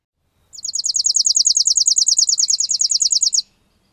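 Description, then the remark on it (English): A chipping sparrow's dry, rapid trill of evenly spaced chips runs steadily for about three seconds, clear against a quiet background, then stops abruptly. “Again, first the chipping, then the junco.”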